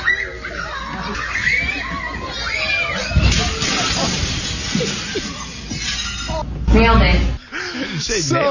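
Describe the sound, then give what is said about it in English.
A large glass window shatters with a sharp, loud crash as the NJ Devil mascot runs through it during a kid's birthday party, followed by scattered noise, while excited voices and shrieks from a crowd carry on around it. “Yeah, so basically the devil takes off and doesn't see where it's going, I guess, and literally runs through a giant glass window.”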